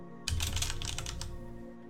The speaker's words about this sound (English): Yep, I was typing it out as you were rolling.